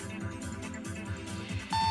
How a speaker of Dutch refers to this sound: En als je de bel hoort, ga je nog ietsje harder. En nog ietsje sneller.